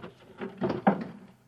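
A chair is shoved under a door, producing a brief scraping rumble with two firmer knocks in the middle, moderately loud and then fading out quickly.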